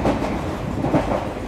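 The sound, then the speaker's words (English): A steady low rumble of a train rolling along the rails in India, heard from inside a carriage, with a continuous droning roar and faint rattling throughout. “I was recently in Jaipur and I'm now on a train to, oh God, I've forgotten where I'm going.”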